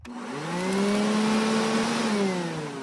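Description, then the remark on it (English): A vacuum cleaner whirs steadily, its motor whine holding a sustained pitch that rises slightly and then sags, over a broad rushing noise. No one speaks. “Oh, it's the vacuum again.”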